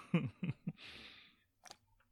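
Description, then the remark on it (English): Sips from a can of chuhai: three quick wet gulps, then a long breathy exhale and a small click, with no talking. “you probably are not gonna see me drinking Chew High on this podcast ever again, or hear me drinking Chew High on this podcast ever again, just because, like, I'm not enjoying this at all.”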